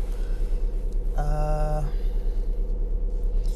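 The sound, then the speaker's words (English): A car engine idles while warming up, a steady, low, throbbing rumble throughout, while a brief tonal chime rings out partway through. “It's heating up my car.”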